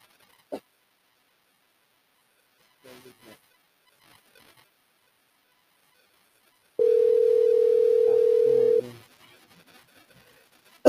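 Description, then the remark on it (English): A telephone rings once with a steady electronic tone lasting about two seconds, loud, as someone calls the phone, set among faint clicks and light rustling. “Oh, he's calling my phone.”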